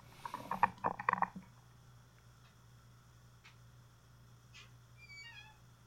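A dog whines to be let out in a short burst of high, pleading whimpers lasting about a second, then falls quiet against a steady low hum, with a few faint high chirps near the end.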